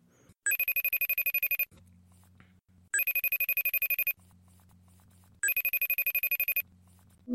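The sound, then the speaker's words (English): A telephone rings three times on an outgoing call, in a steady pattern, each ring a bright, rapidly trilling burst of about a second, separated by quieter low-pitched tones. No one speaks. “Let me see if I can get this guy on the phone.”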